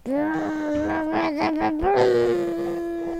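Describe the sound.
A voice imitates a motorcycle climbing a hill with one sustained, buzzing hum lasting about three seconds. The pitch holds mostly steady, wobbles briefly in the middle, then settles slightly higher.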